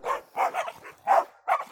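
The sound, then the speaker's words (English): A petrol station owner's dogs barking as they are set on a runner to chase him away from a tap, in a quick, uneven burst of about five sharp, mid-pitched, loud barks with brief gaps between them and no voices. “But the owner set his dogs on … to chase him away.”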